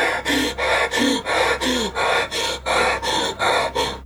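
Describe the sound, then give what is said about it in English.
A voice imitates frantic hyperventilating, with about nine loud, harsh breaths in quick succession, each rasping gasp in a steady, urgent rhythm with no talking. “I think at some stage in the blubbing, you begin to realise that Mikey starts breathing so fast and so hard that he's on the edge of hyperventilating.”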